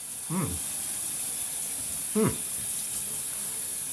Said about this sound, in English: And now? What do you hear? It sounds like a shower.